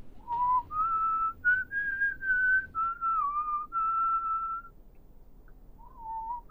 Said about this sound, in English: whistling today? How could you?